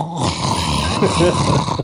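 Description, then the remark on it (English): A person imitates Lockheed, a small dragon, snoring while he sleeps, with a continuous rough, rumbling, growly breath sound, fairly loud, lasting just under two seconds with no other talk. “His whole body is snoring. That's what he sounds like when he sleeps.”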